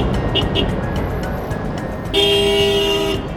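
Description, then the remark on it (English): Steady traffic rumble of a traffic jam on a narrow mountain road at Wuling, with a couple of quick, thin beeps early on, then a loud, sustained car horn blast lasting about a second before fading back into the road noise. “And this all leads to lots of traffic jams, 塞车.”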